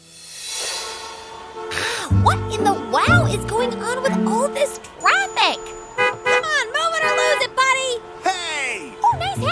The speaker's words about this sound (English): A traffic jam on a weekday at 8 a.m.? Yeah, who could have predicted that?